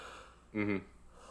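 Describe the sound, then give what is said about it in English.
A brief, voiced yawn, a short groaning exhale of about a third of a second that stands out clearly against faint background hiss, with no talking. “Sorry, I yawned there, guys.”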